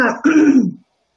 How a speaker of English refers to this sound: And I apologize for my coughing fit.